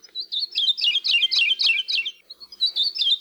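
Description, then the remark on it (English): A Maui parrotbill (kiwikiu, QEQ), one of the rarest birds in the world, found only in the highest elevation forests on Maui, sings a quick, rhythmic run of bright, whistled chirps, repeated steadily, with a brief pause near the end before the phrase resumes. “And for this week's Manu Minute, we hear the song of one of the rarest birds in the world, the QEQ, or Maui parrotbill.”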